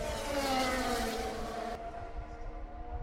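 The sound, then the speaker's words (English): Loud, continuous engine roar of race cars speeding past turn 4 of a Grand Prix circuit, the whine sliding downward in pitch as they go by, then easing into a steady drone. No one speaks. “Cars are still fast.”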